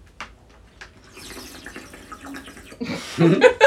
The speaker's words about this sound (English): No, I'm drinking from a bottle of water. I'm not 20 anymore, so forget it.